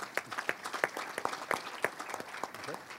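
Audience applause: a brief burst of many hands clapping, with sharp, irregular claps rising above a dense, crackling wash of sound for about three seconds.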